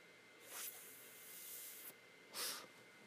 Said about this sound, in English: He knocked the fuck out. He's at snoring. If you're hearing snoring in the background, that's not me yet.